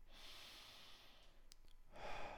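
A long, airy breath drawn in slowly through the nose for nearly two seconds, followed by the start of a fuller, breathier exhale through the mouth. Soft, with no talking.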